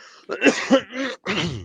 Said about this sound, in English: Excuse me, I'll clear my throat.